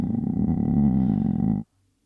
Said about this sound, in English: She's like, can you get like a stomach rumble noise? I don't even know why. I need a stomach.